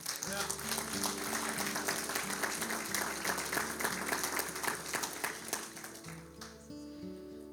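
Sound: audience clapping hands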